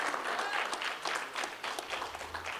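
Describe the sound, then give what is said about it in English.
An audience claps their hands together in praise of Jesus in a dense, sustained burst of applause, many overlapping claps forming a steady crackling wash at moderate loudness for a few seconds. “Somebody give Jesus a hand clap of praise.”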